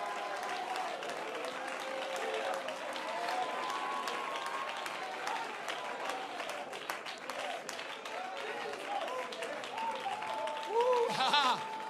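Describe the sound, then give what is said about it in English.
Sustained applause from a church audience during a sermon, a dense, steady patter of many hands with voices calling out underneath, swelling briefly near the end. “Come on, don't clap for me.”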